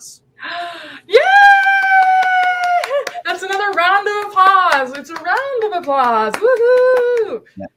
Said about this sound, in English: It's a round of applause. Woohoo! Yeah. That's so exciting.